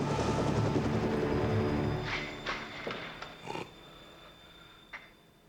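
A helicopter's dense, rumbling roar fills the opening seconds, then fades away, leaving scattered short bursts and clatters against a quieter background.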